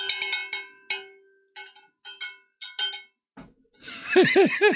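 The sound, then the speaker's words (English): A bright metallic bell rings repeatedly, first in a quick burst of strikes, then in slower, uneven rings with short decays. It ends with a stretch of warbling, high-pitched sounds. “I got myself a bell.”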